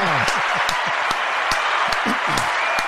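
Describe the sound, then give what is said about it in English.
A crowd applauds steadily, dense clapping filling the whole stretch, with excited voices whooping and cheering over it, loud and continuous throughout. “The crowd's starting to lighten up a little bit and they're getting after it.”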